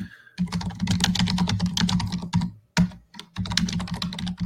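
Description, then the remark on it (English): Rapid, steady clicking of keys on a computer keyboard, fairly loud, with a couple of brief pauses before the typing resumes. No one speaks. “Sorry for the. No, you're good. For the typing.”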